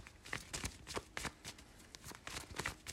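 Tarot cards being shuffled, a quick series of crisp, papery riffles and slaps in an uneven rhythm, with no voices.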